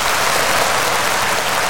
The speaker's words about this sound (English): Have you got a round of applause? I've got my bloody thing plugged in now because it was buzzing. Oh, okay. I've got a round of applause.